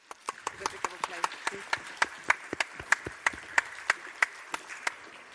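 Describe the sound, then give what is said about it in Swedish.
An author-talk audience claps for the moderators as they step up onto the stage, together in a steady, even rhythm, about four sharp claps per second, moderately loud, with a faint murmur of voices underneath. “Så ge dem en varm applåd när de nu steppar upp på scenen.”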